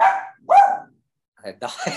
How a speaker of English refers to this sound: my dog. No, I feel like he was like, telling me, go ahead. Like he's telling me to spit it out.